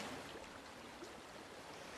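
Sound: river water flowing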